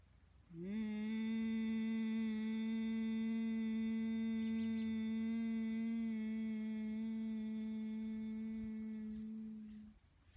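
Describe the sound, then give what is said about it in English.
A single long, steady hummed exhale lasting about nine seconds, a low, even buzzing drone with rich overtones that swells in quickly, holds constant, then fades out, like a bee's buzz. It is a Brahmari (buzzing bee) breath, a slow humming exhale done as a vibration. “A Brahmari breath is a buzzing bee breath.”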